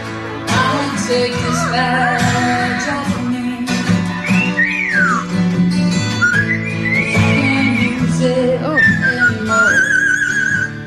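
A cockatoo whistles a melodic tune in clear, sliding tones, holding some notes and gliding between others, over a steady backing of music throughout.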